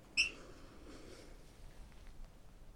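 A single short, high-pitched bird chirp rings out near the start, followed by a faint low hiss with no further calls.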